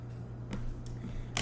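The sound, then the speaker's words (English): Papers being shuffled while a new sheet is got ready: a few brief, crisp rustles spaced apart, the last one louder and sharper, over a faint steady low hum, with no one speaking. “Shuffling my papers around, I had to get a new one ready.”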